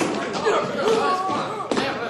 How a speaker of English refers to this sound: Okay, fellas, start stomping.